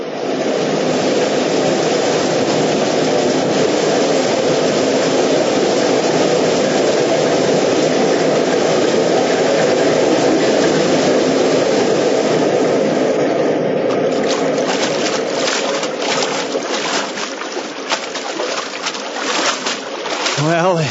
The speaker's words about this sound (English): They're taking us under the waterfall. They're taking us under the falls.